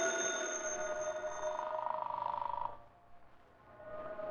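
An old-fashioned telephone bell rings repeatedly in Britt Reed's apartment, with Gunnigan calling from the city room: a loud, rapid metallic trill that breaks off briefly, then starts ringing again near the end. No one speaks.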